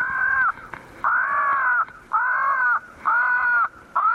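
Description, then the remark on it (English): A tape recording of a crow distress call plays through a loudspeaker at about 6 o'clock in a neighborhood of tall pines and oaks near a ball field, to keep crows from roosting there for the night: a series of harsh, drawn-out caws, about five in a row with short gaps, loud and steady against faint background noise. “A tape recording of a crow distress call broadcasts the news that this is no place to spend the night.”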